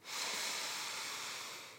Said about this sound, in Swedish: Men vi börjar med att ta ett djupt andetag tillsammans för att bara landa lite mer här och nu. Vi andas in genom näsan och fyller upp magen med luft.